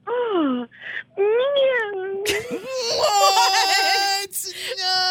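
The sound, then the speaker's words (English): A woman imitates a cat's meow as if on a dinner date, giving a few drawn-out, wavering meows with sliding pitch, followed by loud overlapping laughter and vocal noise. “my date across from me, is sitting there at dinner and she gives out a meow?”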